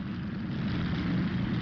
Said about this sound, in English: And so, on the morning of May 10, 1940, Dutch families woke to the sound of roaring aircraft engines. The start of 5 days of fighting that ended in Germany's occupation of the Netherlands.